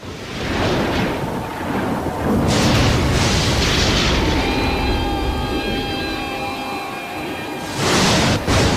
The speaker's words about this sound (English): Don't forget the guitar chord that plays with the lightning strike.